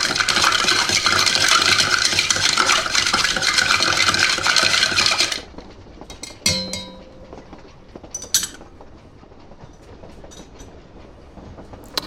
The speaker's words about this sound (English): Yeah, I'm not sure, but we put it into a shaker and then we put some ice in there and we stir it. We don't shake it.